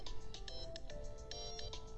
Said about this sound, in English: And there goes my phone.